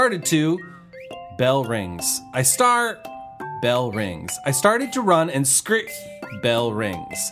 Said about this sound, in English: Finally, bell rings. Oh yeah, I'm in school.